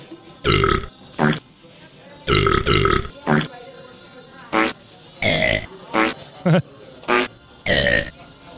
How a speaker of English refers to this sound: There's more reverb on the burps.